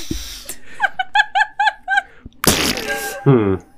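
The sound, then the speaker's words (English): A voice makes a quick string of about six bubbly, warbling pulses, then a loud spluttering burst and a short voiced groan, mimicking a wet fart as the noise of a creature exploding. “That's like a nasty fart. It's like a wet fart.”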